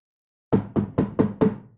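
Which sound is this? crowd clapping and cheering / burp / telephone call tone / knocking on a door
knocking on a door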